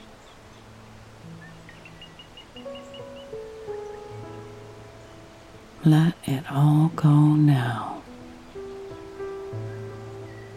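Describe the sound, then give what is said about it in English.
A steady wash of rushing water from a waterfall hisses softly throughout, with a brief run of chirps from birds in the forest canopy early on, sustained low tones, and a calm voice speaking briefly midway. “As you listen to the sound of the birds in the canopy and the sound of that beautiful waterfall”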